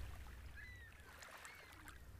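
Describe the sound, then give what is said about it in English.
Soft, gentle splashing of oars moving a small boat through calm water, heard quietly over a low rumble, with a few faint whistling calls in the background. “When Jesus heard what happened to John, he climbed into a boat and began rowing. The oars gently dipped into the water as he rowed away to a quiet place by himself.”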